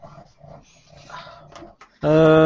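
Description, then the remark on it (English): A dog growls low and whimpers softly for a couple of seconds, then lets out a sudden loud, drawn-out cry at the end. “Gonna go and let the dog out”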